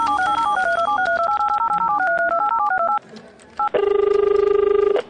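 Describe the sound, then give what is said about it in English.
A quick run of touch-tone dialing beeps as someone makes their single allowed phone call: about three seconds of rapid alternating tones, then a short pause and a loud, steady buzzing ring on the line. “So here's a phone. You get one phone call and that's it.”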